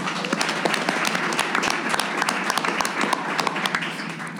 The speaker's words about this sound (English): Thank you guys all for coming out tonight here at Mosaic in Fulton Market in Chicago. Let's give a round of applause for everyone in the room.